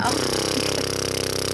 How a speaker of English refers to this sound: Oh. Got some drilling going on.